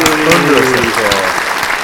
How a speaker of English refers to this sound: And the Daddy Award for the best comedy goes to The Suicide Squad. Great, applause.